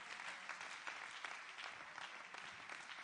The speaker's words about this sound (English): Come on, clap your hands to the Lord and give him praise right